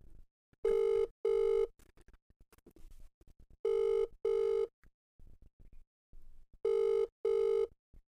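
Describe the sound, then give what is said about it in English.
A phone ringback tone from a call to a man's father sounds in three evenly spaced pairs of steady electronic buzzes, heard through a speakerphone with faint background noise between rings. “It's ringing.”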